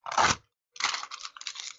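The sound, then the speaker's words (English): Paper notes are crumpled and torn up to be thrown away: a loud crackling rip, a brief pause, then a longer stretch of crinkling and scrunching with no voices. “I am throwing my notes away about ….”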